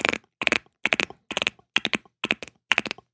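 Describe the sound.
In an office, sharp tongue clicks mimic a galloping horse, falling in seven quick triplet bursts with short pauses between, crisp and bright with no talking over them.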